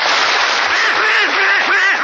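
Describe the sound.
A raspy, nasal Donald Duck voice quacks and sputters in a rapid, unbroken stream, loud. It is a human voice imitating the cartoon duck's garbled chatter.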